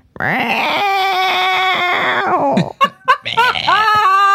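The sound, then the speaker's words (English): A person imitates the meow of an old cat named Pisu with a long, drawn-out, wavering wail that slides downward, followed by a few shorter, choppy yowls, loud and strained like an old cat. “this is really how that cat would meow.”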